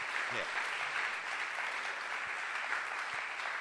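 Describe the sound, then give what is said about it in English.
A crowd claps steadily throughout, a dense, even wash of applause that stays loud and sustained from start to finish with no pauses. “I think everybody's applauding because they're hearing that you're talking about relationships honestly.”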